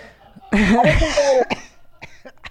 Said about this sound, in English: Sorry. I coughed into your mic.